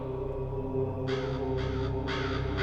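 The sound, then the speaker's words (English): Three harsh crow caws in quick succession over a low, steady droning background, each call rasping and fairly loud, from an approaching crow. “Listen to the approaching crow.”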